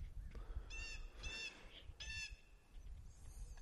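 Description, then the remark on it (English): Birds call outdoors in a few harsh, honking bursts, three clear calls in quick succession and a fainter one after, over a low rumbling background. No one speaks. “I think the birds just answered, nothing.”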